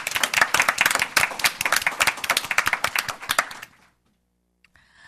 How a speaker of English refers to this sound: But I think we all owe Bill a round of applause for the great work that he's done.